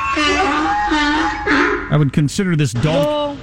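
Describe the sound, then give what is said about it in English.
A human voice imitates a donkey braying as a breaking-news cue: a long nasal drone, then a loud run of rapid, wavering hee-haw cries rising and falling sharply in pitch. “I would consider this donkey abuse, as we have a live donkey here we keep in a pen, and When that's the breaking news donkey, and when we have breaking news,”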